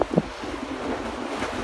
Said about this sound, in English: so we usually come down here to the lake when it's like that so we can check it out, and it's fun. It's fun to see the huge splashes, and hear the wind, and see the spray flying everywhere.